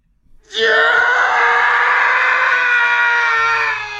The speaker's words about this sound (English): That's the Howie scream, you two. Why? It's so there's a bunch of stock sounds that people use in shows over and over. That's one of the screams that people use, and it's in the title of this show.